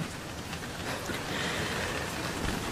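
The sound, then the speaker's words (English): A steady downpour hisses continuously, a dense wash of rain at even loudness throughout, with no voices and no distinct thunderclaps. “In my excitement, I did not see that storm for what it was.”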